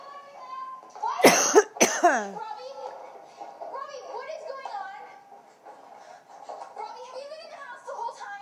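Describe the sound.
Two sharp, loud coughs in quick succession near the start, followed by a child's voice chattering and playful vocal sounds continuing in the background.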